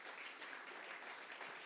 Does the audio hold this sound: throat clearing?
no